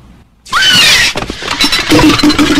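sound effect, man screaming

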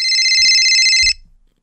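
signal or alarm, phone ringtone

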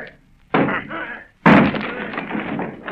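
impact, door being battered down

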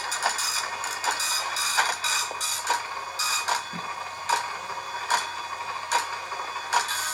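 machine, dot matrix printer printing

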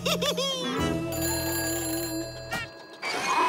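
signal or alarm, telephone ringing

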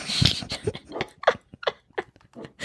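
animal, dog growling

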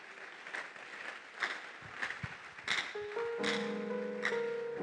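crowd, audience clapping

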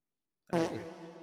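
human body sound, fart

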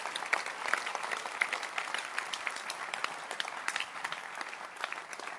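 crowd, audience clapping hands

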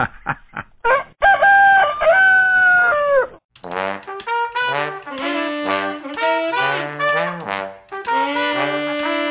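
bird, rooster crowing

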